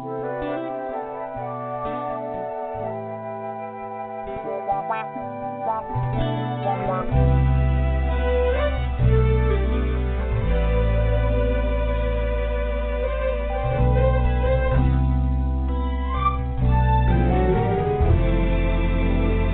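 An R&B song plays on Beef Stew Radio, loudly and steadily, opening with smooth layered melodic tones before a deep bass line and beat kick in a few seconds later, with no talking over it.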